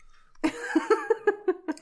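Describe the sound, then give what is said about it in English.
A fairly loud run of about seven quick voiced bursts in a steady rhythm, a strange cough blended with hiccups that edges toward giggling. “I can't tell if you were coughing or just giggling. That was a weird cough hiccup.”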